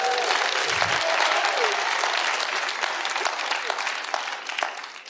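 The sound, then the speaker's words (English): A church audience bursts into sustained hand clapping as praise to God, a dense, steady wash of many overlapping claps that holds loud for about five seconds before slightly thinning at the end, with a faint voice or cheer mixed in. “Now give God a hand clap of praise.”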